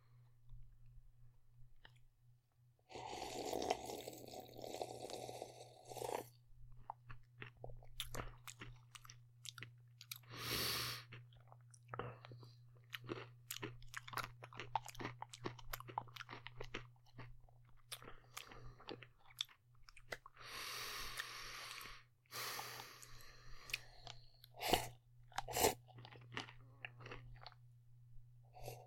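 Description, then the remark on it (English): Steady, wet chewing of crunchy food with sharp, irregular crackles and crunches, plus a few louder bursts of crushing, over a constant low hum and no talking. “Crunchy's a pretty good mouthfeel.”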